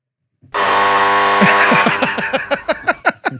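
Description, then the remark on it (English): A loud, harsh buzzer sound effect, set off by pressing a button, blares steadily for over a second, then breaks into a series of quick, stuttering pulses before cutting off. No one speaks over it. “You hit the button yourself.”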